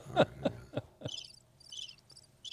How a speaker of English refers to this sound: Play the crickets again, Ed.